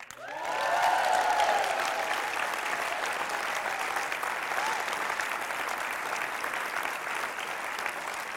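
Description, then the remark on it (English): At a Church Unlimited service welcoming in Kaitaia, Whangarei and Rotorua, a crowd breaks into loud, sustained applause, with cheers and whoops rising over the clapping early on, then settling into steady clapping that continues to the end. “Just want you to know, Rotorua, Kaitaia, Whangarei, they never cheer me like that when I start, but hey, you guys are real special.”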